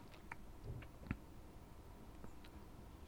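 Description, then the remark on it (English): A quiet, close-up sip of a drink: a few soft wet mouth clicks and one brief gulp-like knock, with no talking over a faint steady background. “Taking a sip.”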